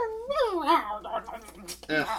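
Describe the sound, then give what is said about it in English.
A dog whimpers, a couple of high, wavering whines that slide downward in pitch, followed by a short breathy yelp-like whine at the end. “He's back! Ophicus, where have you been?”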